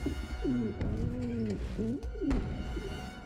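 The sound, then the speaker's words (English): Pigeons cooing, several overlapping rolling coos that rise and fall in soft, throaty waves, with a steady low background rumble and no talking. “Here, of course, we reveal that they're shrunken the whole time, the giant pigeons.”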